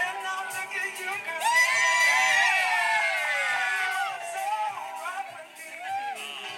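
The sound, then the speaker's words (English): A crowd cheers wildly in the afternoon, with whoops and shouted yells rising into a loud, sustained roar of overlapping voices that swells and dips across several seconds. “Everyone loses their shit in a minute. Fucking going off.”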